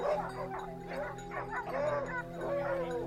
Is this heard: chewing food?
no